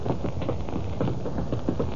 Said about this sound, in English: A late afternoon thunderstorm breaks over the city.